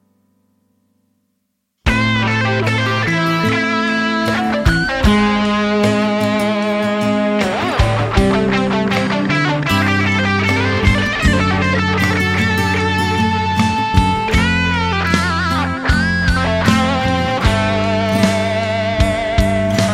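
After a brief silence, a loud full-band rock track kicks in with thick distorted electric guitar chords ringing over steady drums and bass, playing continuously with no voices.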